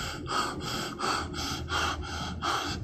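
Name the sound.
heavy gasping breathing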